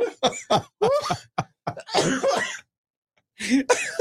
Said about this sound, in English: I'm going to mute your mic while you cough this out.